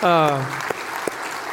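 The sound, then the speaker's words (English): A crowd breaks into steady applause, a dense wash of clapping with a few sharper claps standing out, opening with a voice giving a falling, drawn-out cheer. “So you should give yourselves a big round of applause.”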